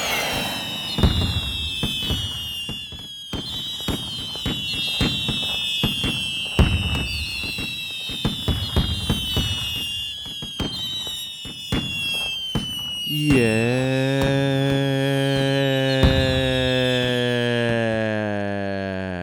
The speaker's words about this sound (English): I think we may need a little more gunfire. Mm-hmm. Mm-hmm. A little bit more.